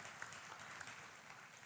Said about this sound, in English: Amen. Let's give God a hand clap today.